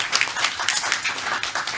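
A crowd applauds, many hands clapping in a dense, steady patter with no single beat standing out. The clapping stays at an even, moderate loudness with no voices over it.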